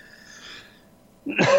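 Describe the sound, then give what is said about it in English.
A person breathes in with a faint, wheezy rasp, then lets out one loud, abrupt cough near the end. “So I will cough for a second, and then I will bring up this message.”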